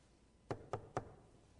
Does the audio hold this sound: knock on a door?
yes